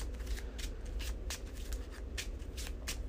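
Riffle shuffling of a card game deck after a card is shuffled back into it, a series of quick crisp flutters and snaps repeating every half second or so, with no voices.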